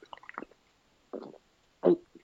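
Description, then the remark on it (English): Red cream soda being gulped: a quick run of small wet swallowing noises, then two separate, heavier gulps, the last one loudest, with no one talking. “I'm drinking some. Sorry, got a swallow of Barks Red Cream Soda there.”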